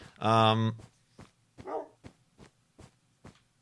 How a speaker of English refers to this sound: that was a loud squeal or whatever noise the dog makes.